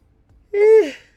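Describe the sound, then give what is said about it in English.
A single drawn-out yawn, the speaker's second, with a voiced, breathy tone that slides downward in pitch before trailing off, after a moment of near silence. “Yawn number two? That was quick as shit.”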